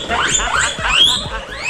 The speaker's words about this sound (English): Wow. That sounds like an alarm. It's a guinea pig.